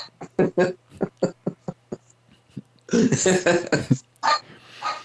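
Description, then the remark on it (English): A dog named Xena, wanting to go out, lets out a steady run of short, sharp yips, breaks into a rapid flurry of louder barks, then trails off into high, drawn-out whines over a faint low hum. “I can't believe my dog wants to go out again.”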